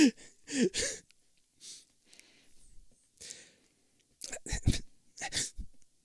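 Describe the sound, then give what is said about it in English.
Repeated short, breathy sniffs come in irregular bursts, some in quick pairs or clusters, mixed with snort-like nasal breaths and brief quiet gaps, with no clear talking. “No, but now everybody heard me sniffing.”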